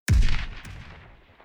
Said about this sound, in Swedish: Ett skott var allt som behövdes.